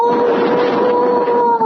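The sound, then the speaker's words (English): A man lets out a loud, sustained howl over the phone before hanging up, held at a steady pitch for almost two seconds, unbroken, with no other voices. “He just howled and hung up.”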